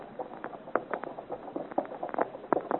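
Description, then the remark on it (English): Horses' hooves clip-clop along a road in a quick, uneven patter of sharp knocks, steady throughout, with no voices over them. “We are traveling well, Boislaurier. We have made good speed. We have fine horses, Chevalier.”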